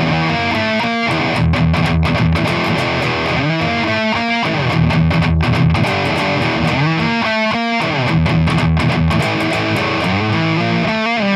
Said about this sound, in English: When it happens four times, that ending little power chord changes. So I'll play the whole thing. It does a F, a G, and an A.